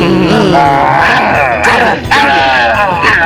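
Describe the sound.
A person imitates a dog growling, a loud, rough voiced rumble with wavering pitch that runs almost continuously, pausing briefly midway before growling again.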